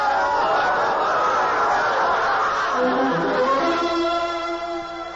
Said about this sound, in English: I listened to the angry crowd. I walked to the rail of the ark, which we were building in the meadow, and got closer to the people. They were making fun of the ark and of me.